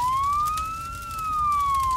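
A fire truck siren wails loudly on its own as the truck rushes to a house fire, one slow high-pitched rise and fall with a steady bright tone and a faint rumble underneath.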